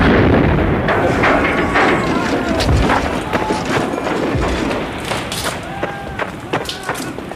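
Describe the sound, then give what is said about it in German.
A camper van explodes loudly and rumbles on with a dense barrage of sharp cracks and pops, like debris and ammunition bursting, while voices shout faintly underneath. “Ich glaube es nicht, der Campingwagen ist explodiert.”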